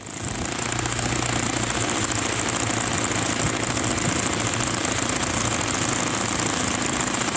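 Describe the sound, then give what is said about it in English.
An aircraft engine runs steadily and loudly, a constant roar with a low droning hum and a buzzy, rattling texture that holds unchanged throughout, with no voices. “And that's going to sound much better in real life when it's on an airplane.”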